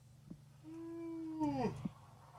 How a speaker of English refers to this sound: Yep, big yawn. God. Oh, I'm here. Big yawn. I'm alive.